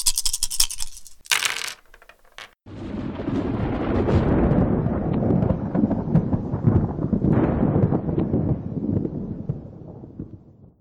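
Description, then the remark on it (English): A sharp crackling burst gives way to a loud, deep rolling thunder sound effect that swells and lingers for several seconds before slowly fading, with no voices. “They're called Rolling Thunder.”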